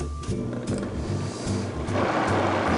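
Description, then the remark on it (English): A blender motor whirs steadily with a low, pulsing hum while pureeing hot squash soup with the lid on, then turns louder and harsher near the end as the contents churn. No one speaks. “So now that we have all of our ingredients in the blender, we can just put the lid on and blend this.”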